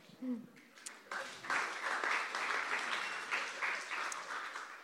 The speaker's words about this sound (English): Really, you should probably clap yourself as well, because you did that. You did that.